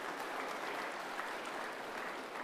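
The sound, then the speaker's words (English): Steady applause from an audience, a dense wash of many hands clapping at an even level throughout, with no voices standing out. “Thank you very much for the round of applause. Would you like to give the children one now as well?”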